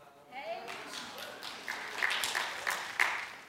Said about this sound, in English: That's a miracle. I thought we'd get a bigger round of applause than that.